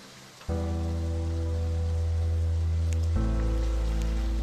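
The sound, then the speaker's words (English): Steady rain hisses beneath a loud, low droning hum that swells in after a moment and deepens further near the end, giving a continuous, rumbling ambience of an increasingly intense storm with the wind blowing hard, and no voices. “You guys are standing and in an increasingly intense storm, the wind blowing hard.”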